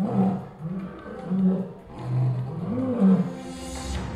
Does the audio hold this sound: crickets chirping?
no